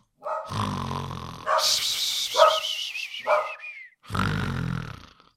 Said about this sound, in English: Oh, all the barking. Wolfie, Eva, whatever your name is. Ixnay on the Ark Bay. Eva. Shh. Come. Shh. Wolf, yeah, I know. Everybody's freaking out at the doorbells.